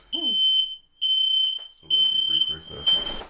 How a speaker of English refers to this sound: We're going to have to pause the podcast. Somebody set the smoke alarms off.